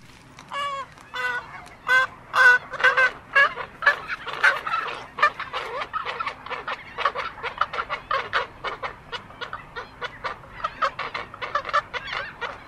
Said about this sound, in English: That is a colony of roseate spoonbills. I'm coming from the Audubon.org website.